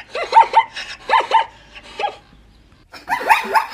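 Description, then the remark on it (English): A zebra calls in loud, harsh yelping barks, delivered in quick paired bursts that rise and fall in pitch, with a brief pause before a final burst of calls. “That is a zebra. Oh, they do yodel.”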